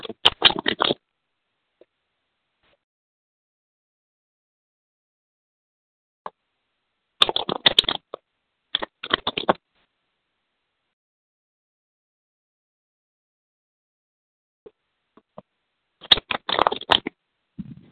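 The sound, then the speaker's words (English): Riffle-shuffling of tarot cards comes in four short, crisp bursts of papery flapping, spread out with long silent pauses between them, fairly clear, with no voices. “Tell me when to stop shuffling, honey, okay?”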